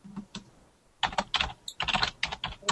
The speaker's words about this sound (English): God, you either are typing very angrily, or you have the loudest keyboard. Everybody says. I think it's just because it's cheap. It's right next to the microphone.